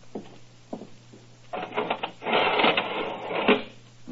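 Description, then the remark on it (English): A heavy iron window shutter over a French window is lowered and rattles down: a few scattered metallic clicks, then a loud, continuous clattering roll that grinds on steadily until it settles. “First of all, if you'll be good enough to go inside and lower the iron shutter.”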